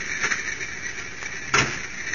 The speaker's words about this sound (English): What was that? That's the wind. The door's open and closing.